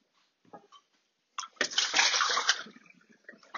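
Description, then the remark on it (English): Water gushes from a tap into a dog's water bowl, fresh water for a dog named Wolfie, in a loud burst lasting about a second, framed by a few soft clinks and splashes before and after. “Shall we get you some fresh water, Wolfie?”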